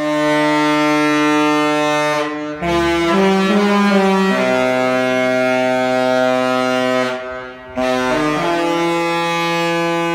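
A loud, deep ship horn blasts out a TV theme tune, holding long sustained notes with short pitch steps between them and two brief breaks, dominant with no talking.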